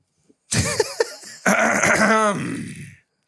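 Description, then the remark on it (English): A person clears their throat loudly: a couple of short, rough guttural bursts followed by a longer, drawn-out rasping hack that fades out. “Clear your throat, say it with your chest, go.”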